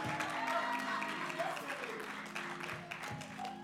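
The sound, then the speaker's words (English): A church audience claps steadily for their pastor, a dense, sustained patter of many hands filling the whole stretch, with a few voices calling out amid the applause. “So give your pastor another clap.”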